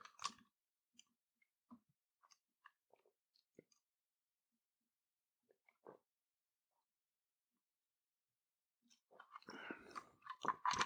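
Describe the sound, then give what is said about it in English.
Sipping and swallowing of water: scattered soft wet mouth clicks and gulps with quiet pauses between, then a louder, denser burst of slurping near the end. No one speaks. “Water break. Make sure you're sipping on some water.”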